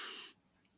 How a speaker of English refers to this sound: Sorry, I'm going to sneeze one set.